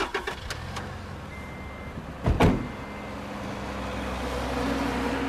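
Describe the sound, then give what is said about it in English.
A few sharp clicks and clunks, then a brief loud burst as a car engine starts, settling into a steady low rumble that continues to the end. “I say that we get in the car and we go.”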